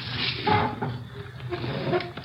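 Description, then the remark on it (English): Chairs scrape and bump across a kitchen floor as a couple of chairs are pulled up: short dragging movements with faint squeaks over a steady room hiss, and no voices. “Pull up a couple of chairs.”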